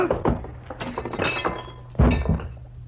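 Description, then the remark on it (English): A flurry of dull thumps and knocks as a punch lands on a man, then a heavy crash of his body sprawling onto his coffee table, with clinks and breaking glass rattling as it settles. No talking. “Gillum sprawled all over his coffee table, as limp as a 5-cent salad.”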